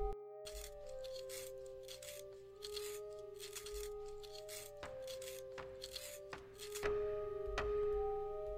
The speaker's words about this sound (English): Okay, while you're doing that, I need to sharpen a pencil for you.